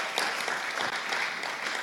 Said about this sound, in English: Can we just give him a clap now to honour and welcome the gift of teaching?